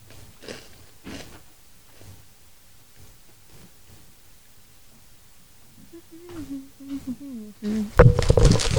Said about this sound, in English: Crunch.